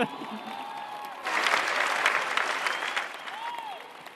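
A large audience at a veterinary school graduation ceremony for the class of 2022 in Yolo County breaks into steady applause, the clapping swelling suddenly after a quieter opening and continuing as a dense, sustained wash of many hands with faint cheers mixed in.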